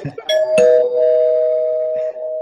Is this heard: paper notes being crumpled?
no